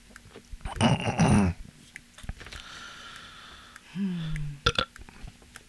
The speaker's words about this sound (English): Oh, don't drink no coke. You belching again.